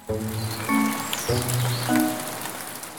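Steady rain patters down in a continuous hiss, with soft musical tones playing over it at a moderate level.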